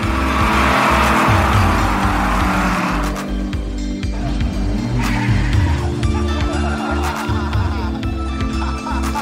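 An old American car drives by, its engine rumbling loud and steady for the whole stretch, with a rough, throaty low growl and some road noise.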